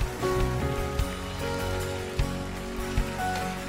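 crowd, audience clapping

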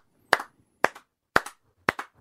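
crowd, clapping

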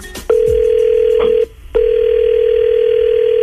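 signal or alarm, telephone call dialing tone

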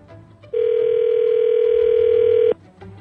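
signal or alarm, telephone ringing

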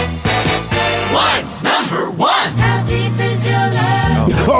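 animal, dogs barking

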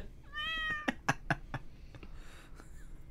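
animal, cat meowing

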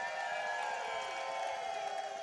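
crowd, crowd cheering

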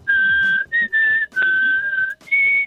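human body sound, person whistling

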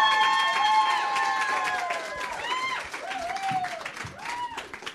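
crowd, audience applause and cheering

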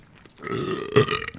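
human body sound, burp

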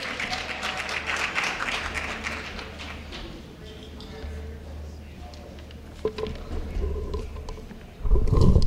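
crowd, audience round of applause

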